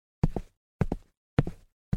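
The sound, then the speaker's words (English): Footsteps of a woman walking at a steady pace, each step a quick heel-then-toe double thud, repeating evenly about every half second with nothing else audible in between. “Then, you see her, and she's walking towards you.”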